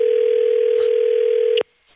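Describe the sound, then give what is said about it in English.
A loud, steady electronic tone from a malfunctioning cheap phone during a call drones with a harsh buzzy edge for about a second and a half, then cuts off abruptly, leaving near silence. “Her phone was having issues and making strange noises in this clip.”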